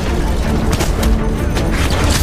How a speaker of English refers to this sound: Glass smashed out of a high window as a dark shape burst into the room.